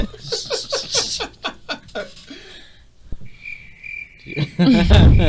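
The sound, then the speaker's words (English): A cricket chirps in a short, steady trill amid bursts of laughter, with a louder noisy rush at the very end. “Cricket.”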